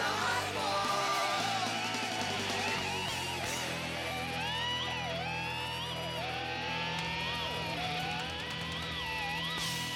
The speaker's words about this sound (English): screaming in the background? I think it's cool.